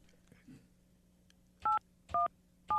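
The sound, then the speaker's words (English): Three short, clear telephone keypad tones beep in an uneven sequence as a phone number is dialed to call a sprint car racing champion, each a brief two-pitch dual-tone blip, loud, after a moment of quiet room hum. “I didn't dial 911 this time. Crap, where's his number?”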